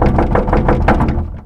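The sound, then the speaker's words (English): Rapid, insistent knocking on a door, a quick run of loud raps that tapers off slightly at the end, with no voices. “I heard an urgent knocking on the door.”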